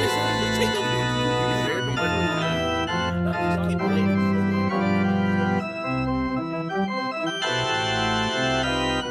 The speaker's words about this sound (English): That there tune's the wedding march. Oh, the wedding march? Oh, holy cow.